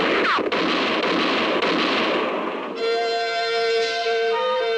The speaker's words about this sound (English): For about 5 seconds, the moonlit clearing thundered to the sound of gunfire. And then it was all over.